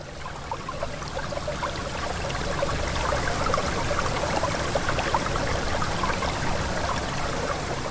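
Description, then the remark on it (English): A stream burbles and splashes steadily over rocks, a continuous wash of bright trickling water with no voices, holding an even level throughout. “And moss and the wind and water running over rocks.”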